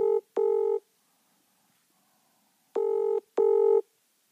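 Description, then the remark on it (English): A telephone ringing-out tone sounds twice in a double-pulse pattern, two short buzzing rings, a pause, then two more, clear and steady with no voices. It is a live call on the Seven Sport show to guest Jack Watts. “We'll try and get it on live, see if he answers his phone.”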